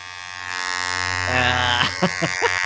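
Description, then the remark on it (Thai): A massage gun buzzes steadily as it is pressed on to massage, with a loud, droning motor hum that deepens in intensity partway through, while a few short bursts of voice break in near the end. “ปืนนวดนี่ดีนะเพราะว่าปืนนวดนี่เป็นของที่ใช้ดี มันก็จะนวดกดปุ๊บนะ”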